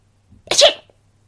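A loud sneeze and cough: a brief sharp intake of breath followed by an explosive burst of breathy noise that quickly fades, with near silence around it.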